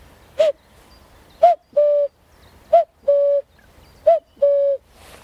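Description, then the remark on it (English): A person blows through cupped hands to imitate a cuckoo, giving three clear, hollow two-note "cuck-oo" calls, each a short note followed by a longer steady one, fairly loud with no talking. “So lots of people are tricked into thinking the cuckoo's arrived, and actually it's a human sound.”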